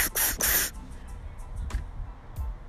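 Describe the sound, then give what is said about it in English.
A fire extinguisher sprays in two quick, loud hissing blasts at the start, followed by a few shorter, softer puffs of spray spaced apart. No one speaks. “Spray that motherfucker two times. Or four times.”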